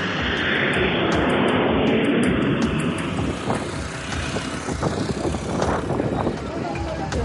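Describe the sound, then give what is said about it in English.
A loud, steady airplane roar fills the whole stretch, a broad rushing engine drone that swells slightly partway through, with muffled voices faintly beneath it. “boarded a plane and headed home to Nicaragua.”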